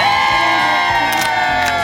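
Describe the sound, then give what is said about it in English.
A large crowd on the plaza at the Today show cheers loudly and continuously at Christmas time on a Monday morning after the parade. It is a dense wall of voices with scattered higher whoops and shouts rising out of it over two seconds. “I thought the crowds were going to thin out after the parade.”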